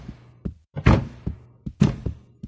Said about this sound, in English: Little frog, stomp your feet.